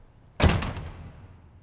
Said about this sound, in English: Then, one night, a slam jolts me awake.